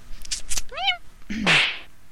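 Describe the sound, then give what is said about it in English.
A cat that has escaped gives a short, rising-and-falling meow, followed moments later by a louder, harsher, breathy yowl. A few soft clicks come just before. No one speaks. “It looks like that bloody cat's escaped again.”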